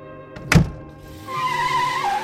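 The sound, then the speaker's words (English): A single heavy mechanical clunk as a car is put into gear, followed by the car engine humming steadily with a faint rising whine, with no voices. “Simon walked calmly back to his car. He put it in gear”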